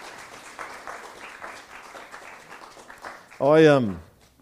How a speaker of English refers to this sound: And do you want to give a round of applause? Come on.